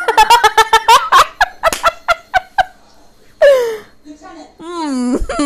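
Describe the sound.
A person imitates a goose with a rapid burst of loud, nasal honks, then gives a few longer, drawn-out wailing honks.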